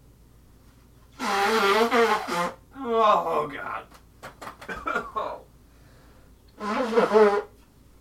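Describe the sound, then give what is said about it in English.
Loud, honking nose blows come in drawn-out, wavering bursts, with some brief rustling in between and a short exclamation from a voice. “I'm not fucking around there when I had to blow my nose.”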